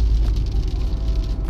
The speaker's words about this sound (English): Okay, so it's starting to rain, but traffic is already starting to back up in a spot that it normally doesn't back up on, which does not bode well for me getting to work anytime soon.